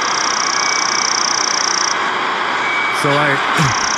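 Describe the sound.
A tiny bird about the size of a golf ball, in a courtyard tree, gives a thin, high, steady buzzing trill that holds for about two seconds, fades, then returns briefly amid a short low, voice-like murmur.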